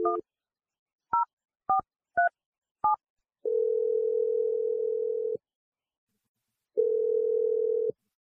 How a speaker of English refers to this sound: Here we go. I'm gonna dial her number right now.